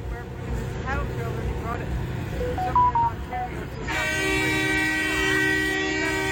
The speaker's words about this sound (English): Yes, I know the honking is annoying. I get it.